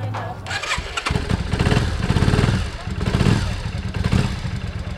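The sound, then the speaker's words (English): A motorcycle engine revs and idles outdoors on a home driveway in Santa Cruz, its rumble surging and dropping in uneven bursts, with mechanical clatter and faint voices of about six bikers chatting and working on their motorcycles in the background. “and outside on the driveway, a half dozen bikers are chatting and working on their rides. Test it.”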